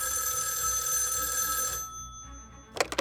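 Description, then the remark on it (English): FBI agent Angelo Lano's telephone rings loudly on June 17th, 1972, a long metallic bell trill that stops, followed by a short pause before the next ring begins with a few quick bursts. “33-year-old FBI agent Angelo Lano was getting his boys ready for their morning baseball practice when his phone rang.”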